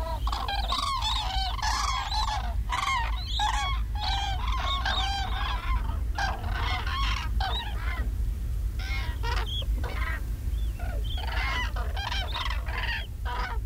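A flock of common cranes on the Rügen Islands in northern Germany, recorded by Chris Watson, calls in a dense, overlapping chorus of loud bugling cries, sustained throughout over a low, steady rumble of outdoor background noise.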